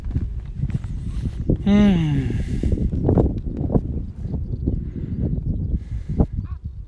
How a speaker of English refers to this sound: Yeah, Mr. Crow. Okay, hold on. In Native American tradition, three crows is not a, it's a bad omen, but there's only two.